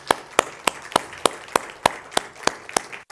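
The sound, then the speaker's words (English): An audience applauds standing fathers and grandfathers on Father's Day morning, in a steady, evenly spaced rhythm, about ten sharp, bright claps in three seconds, with a low murmur of background noise between the beats. “And ladies, if you would be kind enough to give these gentlemen a round of applause, all right?”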